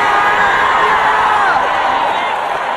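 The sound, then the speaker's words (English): A large church audience shouts and cheers together in a loud, sustained roar that fills the whole stretch without pause, voices blending into a dense crowd wash. “Come on, let the church scream hallelujah.”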